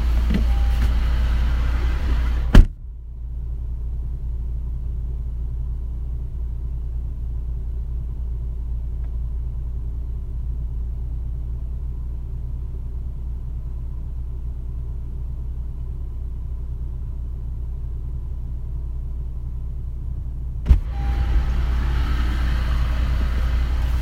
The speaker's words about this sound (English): All right, we're gonna park our vehicle inside. I'll be right back.